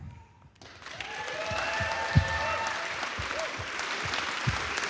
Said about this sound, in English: And so why don't you present, read each person's name. Let's have applause for each person.